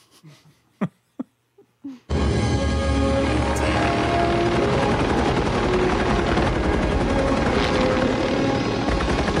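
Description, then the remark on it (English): A loud helicopter in a James Cameron film scene, the chopper carrying the character Rose, roars in abruptly after a few brief, sharp sounds, its dense rotor and engine noise filling the scene continuously until the end. “This is the chopper where Rose is in the chopper.”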